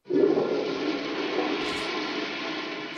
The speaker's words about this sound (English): That's a fucking toilet flushing.